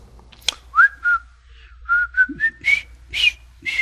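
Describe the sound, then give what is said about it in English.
A group of girls whistles a short melody of several clear, sliding notes in a bouncy rhythm, fairly loud, with breathy edges on each note, while following behind two others; no talking. “And all the other girls, for some reason, took it upon themselves to follow behind them, whistling a little song.”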